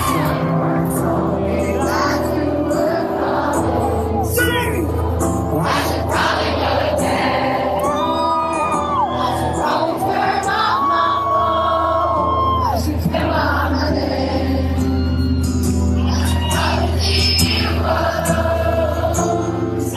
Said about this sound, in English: Yeah, he was playing the guitar the whole time and singing, but you couldn't hear him over the crowd, so.